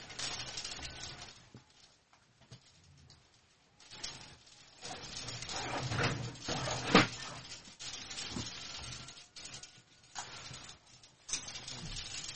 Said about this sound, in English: Wow. That is a heavy hailstorm. Look at that.